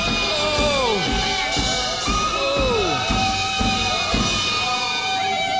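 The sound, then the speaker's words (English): A dense crowd of captives wails and cries out together, overlapping moans and shouts rising and falling in loud, continuous anguish without a break, louder than the surrounding water. “The voices of the captured ones erupted into moans and screams, louder than the rest of the water.”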